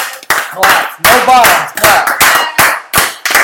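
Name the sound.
hand clapping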